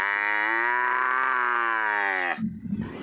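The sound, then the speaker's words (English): A she-camel, Aruana, lets out one long, thin, plaintive scream, loud and held steadily for about two seconds before breaking off into a short, low grumbling grunt. “She screamed thinly and plaintively, and the old man shuddered at this heart-rending cry and tugged at the leash to stop the crying.”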